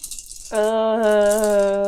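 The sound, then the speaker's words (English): A steady, hissy rattle of many dice being shaken for a damage roll runs throughout, joined halfway through by a loud, sustained buzzing tone at a steady low pitch that continues to the end. “Still sounds like a lot of dice.”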